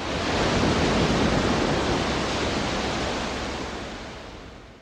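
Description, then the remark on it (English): Steady, full-bodied roar of ocean surf washing onto a seashore, a broad hiss that swells early and slowly recedes over a few seconds, fairly loud with no voices; a recording made to capture the sound of the ocean. “One critic wrote, "Waves come splashing out of the speakers."”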